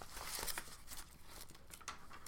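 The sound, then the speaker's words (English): A quiet papery rustle as a page of a paper listing fantasy league scores is turned, with a couple of crisp, hissy swishes and soft crinkling, no voices. “Pause, he's flipping the page.”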